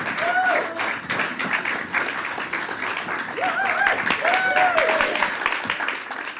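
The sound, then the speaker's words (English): A crowd applauds the comedy act Lazy Susan as they are introduced: a steady, dense patter of many hands clapping throughout, with a few high, rising whoops and cheers from audience members breaking through. “So please give a big round of applause for Lazy Susan!”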